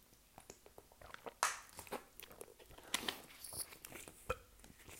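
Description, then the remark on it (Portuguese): Someone drinks Caldas de Penacova water in small sips, with wet mouth clicks, soft gulps and a few sharp crinkles like a plastic bottle being squeezed, spread irregularly over several seconds with no talking. “Vou beber um bocadinho de água enquanto penso.”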